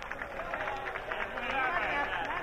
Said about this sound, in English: Oh, look at that now. It's being greeted by sustained applause. 2,500 people all clapping.